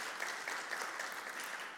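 A crowd of people applauding together, a steady, dense patter of many hands clapping at an even level throughout, with no voices rising above it.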